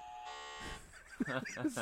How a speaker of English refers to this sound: See, I don't do the buzzer every day, so I don't have the settings.